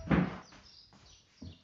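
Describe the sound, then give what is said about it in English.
Faint, high-pitched bird chirps flicker in the background, set between two duller thumps, one at the start and one near the end. No one speaks. “Sorry about the chirping.”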